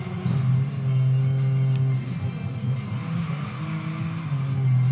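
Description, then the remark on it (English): Hot Wheels cars on Hot Wheels tracks in a racing video game: engines drone steadily at high pitch, with shifting tones as vehicles rev and occasional tire squeals, loud and continuous over five seconds with no voices. “This reminds me a little bit of like F-Zero on Nintendo in a way, only with Hot Wheels cars and Hot Wheels tracks.”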